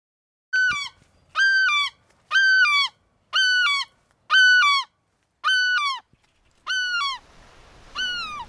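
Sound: geese honking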